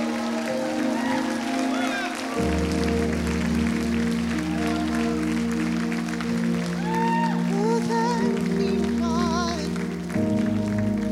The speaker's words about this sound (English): Now, can those of you that have been born again and have the light of the Lord give these people that have come a hand clap of praise for their courage?